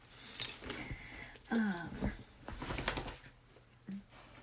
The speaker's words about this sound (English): And also, this is my dog. I'm just gonna take her collar off so she's not. Hi, sweetie.